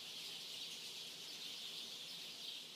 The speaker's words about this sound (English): This next fingerprint is from my friend Kelly Reed, who sent the sound of birds singing.